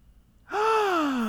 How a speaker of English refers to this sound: Sorry, wait. Can I take that gasp again? Yeah, take it again. Okay.